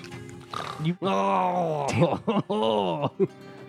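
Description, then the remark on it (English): A person imitates heavy snoring with their voice: loud, rasping groans drawn out over several long breaths, broken by a few short snorts near the end. “You just hear him snoring really heavily.”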